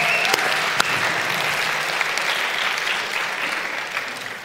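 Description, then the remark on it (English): A church audience at FC claps steadily in a round of applause for two members, a dense wash of overlapping hand claps that holds at an even, fairly loud level for several seconds, with a couple of sharper individual claps standing out near the start. “Can we give Dennis and Michael a round of applause?”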